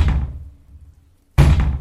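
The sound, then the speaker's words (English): Three loud, heavy knocks on a street door, spaced more than a second apart, each a booming thud with a low, resonant decay. No one speaks. “Just then there were three loud knocks at the street door.”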